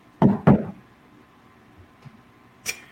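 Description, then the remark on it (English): A washing machine knocks twice in quick succession with heavy, booming thuds, followed by a low background rumble, a soft bump and a brief bright clack near the end. “Those are washing machine.”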